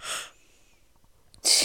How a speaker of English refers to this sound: This girl is yawning.